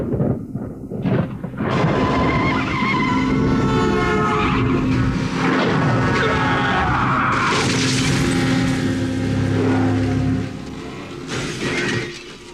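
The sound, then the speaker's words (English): A car skids with a long, loud tire screech over a heavy roaring rumble, a harsh crashing burst partway through, then the noise dies away; no one speaks. “Authorities are now saying that a local man in a car accident may have been the killer they've been hunting for the last 3 years.”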